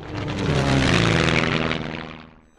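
airplane engine flying

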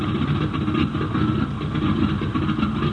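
airplane engine running

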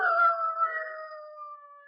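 irish setter dog howling

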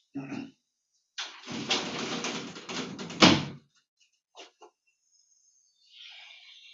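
door being closed

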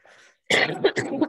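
cough

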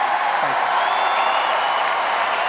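audience cheering and applause

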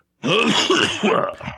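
cough or throat clearing

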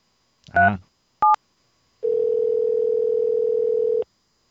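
phone call ringing tone

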